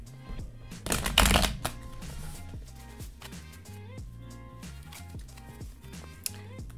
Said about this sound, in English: So I'm doing a February 2021 tarot reading, and how I'm doing this is just pulling three cards out after I shuffle them and ask the universe what Pisces should know.